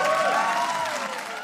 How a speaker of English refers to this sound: And I guess they didn't expect all the introductory applause from the live audience. Mm-hmm. So then they have to wait till that dies down.